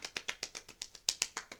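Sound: hand clapping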